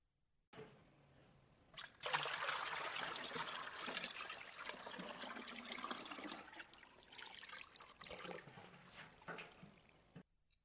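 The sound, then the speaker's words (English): Water is poured to rinse shampoo from a person's hair in a steady rush for several seconds, splashing and trickling as it runs, then tapers off to drips before stopping. “Tip your head back again, and let me rinse out the water.”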